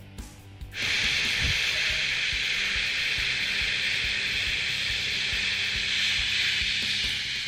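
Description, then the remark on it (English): After a brief pause, voices produce a steady, continuous hissing 'shhh' that imitates white noise. It holds at an even, fairly loud level for several seconds without breaks. “Like, if you can't sleep at night, some people put a fan on yeah. for white noise.”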